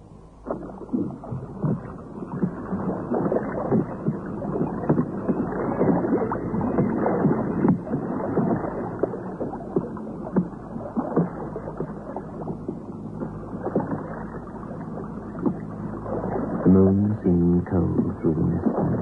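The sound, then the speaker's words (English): Water sloshes and splashes steadily around a small boat being rowed, with a low rumble underneath and a rhythmic churn near the end, no voices present. “And then he found the boat.”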